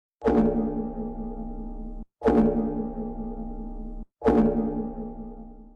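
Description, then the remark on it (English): A deep, ominous cloister bell tolls three times at a slow, even pace, each loud strike ringing out with a rich, droning hum that is cut short by the next. No voices. “Well, that's the cloister bell.”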